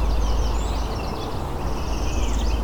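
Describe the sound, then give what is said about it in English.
An American redstart sings thin, high notes in a couple of short phrases over a steady low rumble of background noise. No one speaks. “Red start, American red start.”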